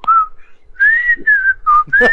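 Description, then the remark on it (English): A person whistles the opening theme tune of a TV show, a short, bright melody in several sustained, gliding phrases, clear, with brief pauses between notes and faint low background sounds. “My dad, to call one of my cats, he would just whistle the theme”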